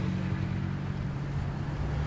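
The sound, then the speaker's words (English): A stolen, carjacked Mercedes-Benz SUV drives past, its engine rumbling with a steady, loud low drone and a faint hum on top, holding constant for two seconds with no one speaking. “According to a couple people who were there, the SUV that passed us was stolen.”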